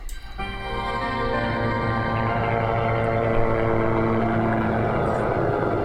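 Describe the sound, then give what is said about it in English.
A video game helicopter's engine drones steadily and loudly with a buzzing, propeller-like whir as it flies away in the game's closing scene, starting abruptly and holding a constant pitch throughout, with no voices. “So they've beaten the final boss, we're in a helicopter and we're flying away.”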